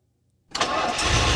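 A car engine cranks and catches after a brief silence, then settles into a loud, steady rumble, with no voices present.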